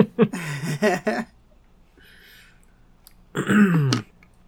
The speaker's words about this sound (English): I'm sorry, I'm going to clear my throat.